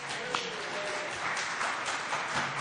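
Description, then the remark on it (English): Audience applause for the artists: a dense, steady wash of many hands clapping that holds at a fairly even loudness throughout, with no voices standing out over it. “Round of applause for our artists.”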